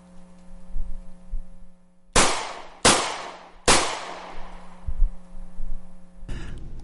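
Three loud gunshots from shooting practice in the background of the Locked and Loaded radio show crack out in quick, uneven succession, each sharp report trailing into a short echoing decay, with a steady low hum underneath.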